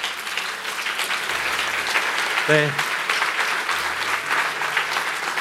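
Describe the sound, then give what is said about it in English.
A church audience claps steadily for people coming to the front for prayer, a dense continuous patter of many hands that stays loud throughout, with a brief tonal voice or note rising above it midway. “The people are clapping for you.”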